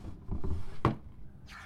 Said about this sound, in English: George listens until the sound of his footsteps disappear down the hall, then slides open a desk drawer and withdraws an issue of Glamour magazine.